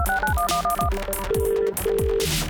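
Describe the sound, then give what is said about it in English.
A bright, catchy Motorola-style phone ringtone jingle plays loudly on its own, stepping through a quick series of melodic tones over a thumping electronic beat. “Time for this, Dan. Hit it. Hello, Moto.”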